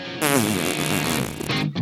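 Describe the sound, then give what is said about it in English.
A voice imitates a man farting up against a chair with a loud, buzzy lip raspberry lasting over a second, its pitch wobbling and sliding, then trailing off in a short sputter. “And he just like, he just farted. Like, listen. It was like up against the chair.”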